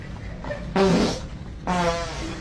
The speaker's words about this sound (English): It's these two. This guy and this girl in the hallway of a high school, like, loving each other, and this dude walks up and just farts beside him.